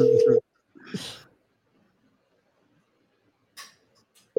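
An outgoing call's ringing tone buzzes in short steady bursts at the start and end, with quiet rustling and faint breathy noises in the gap between rings.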